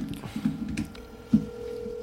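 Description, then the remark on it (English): A phone call to John Dotson being dialed: a few soft clicks and blips, then a steady mid-pitched tone holds through the rest of the short clip. No one speaks. “So we're calling John Dotson right now.”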